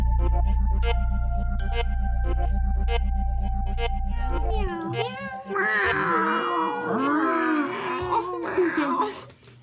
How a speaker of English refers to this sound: I'm in my home with a bunch of cats to bring you the thrilling conclusion for our story, Salem 1692.